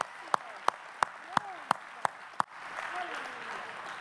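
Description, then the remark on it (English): An audience claps together seven times during a church sermon, in a steady, quick, evenly spaced rhythm, crisp and loud, then the clapping stops and a wash of crowd murmur swells. “Will you help me hiss the enemy away by the clapping of your hands and the declaration today that he is awakening something within us?”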